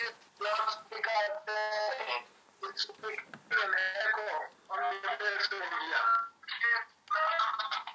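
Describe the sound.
A tinny, echoing voice plays through someone's phone on loudspeaker, making an echo on a messenger call, talking almost continuously for several seconds with brief pauses, thin and boxy.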